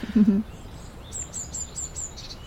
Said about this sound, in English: And it's mainly robins. It's mainly robins, followed with a wren and some blackbirds. And then the tits come in.